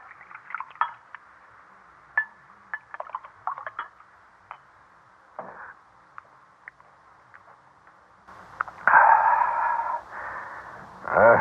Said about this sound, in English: All right, sit down and pour the wine